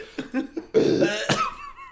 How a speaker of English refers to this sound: Did I send you that one about the kid? Why do all kids just open mouth, cough, tongue out?